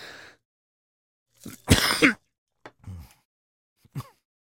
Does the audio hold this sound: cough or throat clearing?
yes